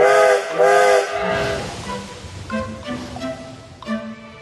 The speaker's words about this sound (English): Oh no, the train's going without us.